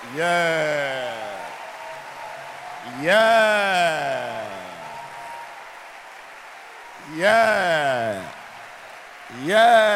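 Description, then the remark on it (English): An audience at a church service claps steadily to welcome the pastor to the pulpit, a continuous wash of applause, while loud vocal cries sweep downward in pitch four times over it, like excited shouts of praise. “Jesus, let your hand clap be loud.”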